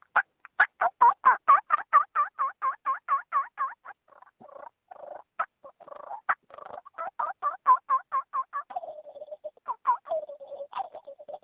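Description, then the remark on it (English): A turkey call runs through a rapid series of sharp yelps, then shifts into softer, rolling purrs, with a quick gobbling rattle mixed in near the end. No voices are heard. “We got some turkey yelps and then purrs and gobble.”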